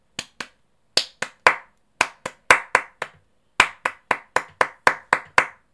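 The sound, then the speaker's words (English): Crisp hand claps tapped out in short rhythmic bursts to count the syllables of poem lines: two, then three, then five, then a longer run of seven, with brief pauses between groups and no talking. “The clapping was smart.”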